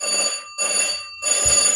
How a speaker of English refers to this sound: Before the other children had time to tell their mother what a terrible day it had been, there was a loud and insistent ring at the door.